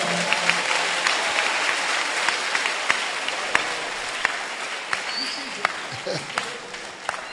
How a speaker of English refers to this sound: Oh, clap your hands for the Lord.